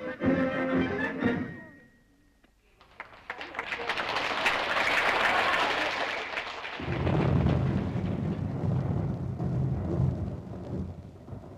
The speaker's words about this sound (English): That part of the entertainment was brought to an end by rain and thunder, but we saw the band again later in the evening.